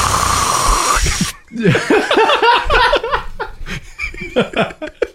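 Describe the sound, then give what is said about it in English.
A loud, breathy hiss of air being drawn in for about a second as someone takes a drag on a vape pen, then giggling, broken bursts of laughter follow. “You took a drag on that vape pen. I can hear it in my headset.”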